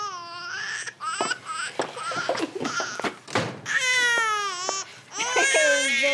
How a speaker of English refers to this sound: Hearing a baby cry is so stressful. It's so stressful.